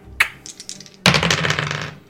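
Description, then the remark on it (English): Dice rolled during a tabletop game clatter across a hard table: a sharp first clack and a few light ticks, then a louder burst of rattling and tumbling that lasts about a second before stopping. “You rolled another 3 on the exact same dice.”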